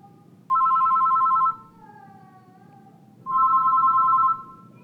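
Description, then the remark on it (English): A 1960s touch-tone telephone, one of the first touch-tone phones, rings twice, each ring a steady electronic warble lasting about a second with a pause between, heard clearly over faint background hum. “And then in the 60s, the first touch-tone phone arrived on the scene, and they sounded like this.”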